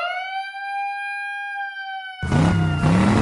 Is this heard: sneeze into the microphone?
no